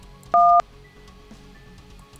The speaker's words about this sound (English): Well, looks like these DTMF tones don't really work well.